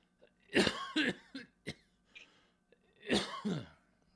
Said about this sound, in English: Excuse me, I had a clear my throat again.